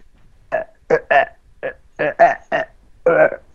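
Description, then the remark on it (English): A run of about eight short, throaty belches, fairly loud, coming in quick irregular bursts with brief gaps between them. “Okay, you don't have to belch.”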